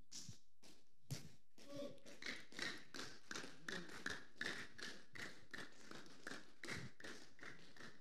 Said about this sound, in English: You are clapping to Jesus. You are celebrating the goodness of the Lord.